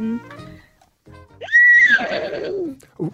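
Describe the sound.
A 14-year-old caller from Campbelltown uses their voice to imitate a horse's neigh: a sharp rising squeal that holds high, then breaks into a loud, shaky, descending whinny, clear after a brief quiet pause.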